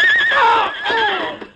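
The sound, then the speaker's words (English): A horse whinnies loudly as it stumbles and falls while racing along a trail through a forest, a shrill, wavering neigh that slides downward in pitch over about a second and a half, with no voices present. “As Curly Wayne raced along the trail through the forest, his horse stumbled and fell.”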